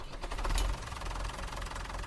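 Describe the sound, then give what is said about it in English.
A Massey Ferguson tractor engine starts up, with a brief louder burst before settling into a steady, deep diesel rumble with a rapid knocking pulse. No voices. “On a brighter note, fire up that Massey Ferguson tractor, please.”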